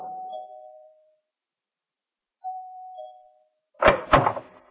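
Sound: doorbell ringing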